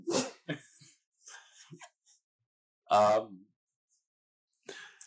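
A dog makes a string of short, sharp noises: breathy huffs and snorts, then one loud, strained yelp partway through, with a final brief snort after a pause.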